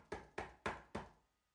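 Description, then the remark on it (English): Four firm knocks on a door, evenly spaced with a slight pause before the last, each a sharp thud with a short decay, standing alone with no voices. “And then there's a knock on the door.”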